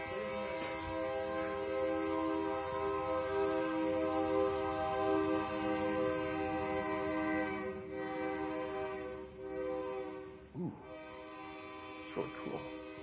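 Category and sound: vehicle, passing train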